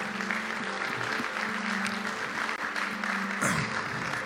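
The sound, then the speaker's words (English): An audience at a church service claps steadily for a group of people, a dense, continuous wash of many hands applauding together, with a low sustained hum and faint voices mixed underneath. “Come on, let's give all those wonderful people a big hand clap.”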